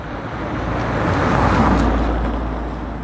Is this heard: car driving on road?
yes